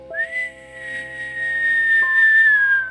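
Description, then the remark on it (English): A person whistles one long, clear high note that holds steady and then slides gently downward, fairly loud, over a faint steady background hum, with no talking. “I learned how to whistle because of that movie, actually.”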